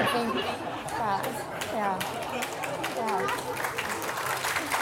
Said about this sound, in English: Oh my God, I cannot get out of it, sorry. And they're cheering even more.